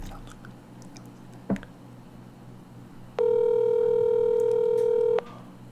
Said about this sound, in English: I wonder if he's gonna answer. He better answer this phone.